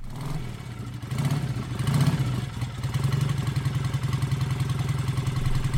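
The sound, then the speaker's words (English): An engine rumbles steadily, revving up slightly toward a speed of 5 miles an hour with a rhythmic, chugging pulse that settles into a fast, even beat, with no voices present. “Anyway, let's get these revs up and hit that magic 5 miles an hour sweet spot.”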